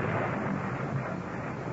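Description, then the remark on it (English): A continuous deep rumble of thunder from a wild electrical storm rolls on without a break, dense and steady in loudness, with no voices over it. “That 15th of the month, the city of Rome is racked by a wild electrical storm.”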